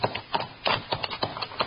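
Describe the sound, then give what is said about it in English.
Horses' hooves clop and shuffle unevenly on hard ground as riders halt among huge boulders at the mouth of a canyon, a quick scatter of dull knocks as the animals come to a stop. No voices. “Tie the horses so they can't move out and get hit.”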